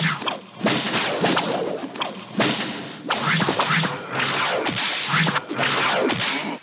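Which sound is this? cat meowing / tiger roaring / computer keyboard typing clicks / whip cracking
whip cracking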